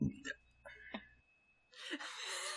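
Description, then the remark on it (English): A low, rumbling burp from a film, lasting about a second, mixed with short vocal hiccup-like bursts, then followed by a broad, loud rushing noise. “I thought that burp was in the trailer.”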